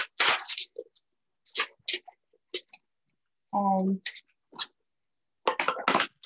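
Crisp snips and rustles of paper being cut down to size, coming in several short bursts separated by brief pauses, with a short humming tone midway.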